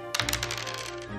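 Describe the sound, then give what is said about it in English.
A quick burst of dice rattling and tumbling across a hard table, a dense run of small clicks lasting about a second, fairly quiet, with no voices. “Oh, I'm not using the right dice. Let me use my actual dice.”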